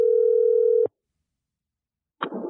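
A steady, humming telephone tone from an outgoing call to a mobile phone sounds for almost a second and cuts off abruptly, followed by a stretch of silence before a short burst of noise at the end.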